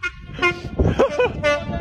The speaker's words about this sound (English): I love this video where you just like hear his like gleeful laughter at all the different noises that this train makes. And he's like doing a counter of like the like multiple kinds of weird tones that the train makes.